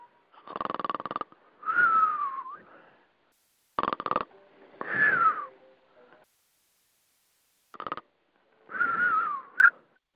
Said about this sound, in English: Oh, wait. Was I snoring? I am so sorry.